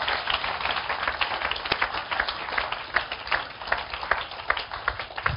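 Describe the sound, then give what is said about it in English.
An audience at a church service claps for Jesus together, a dense, steady wash of many hands striking at once, continuing without a break for several seconds with scattered sharper claps standing out. “clap for Jesus. Clap for Jesus.”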